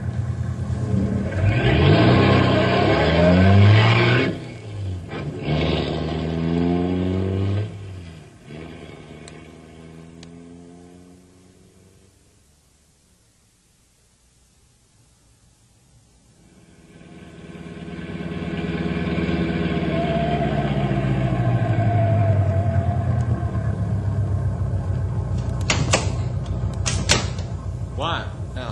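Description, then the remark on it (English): A vehicle engine roars loudly and revs up and down during a chase along a bad road, fading almost to silence midway before surging back in, with a few sharp knocks near the end. “We black and blue from chase down this bad road.”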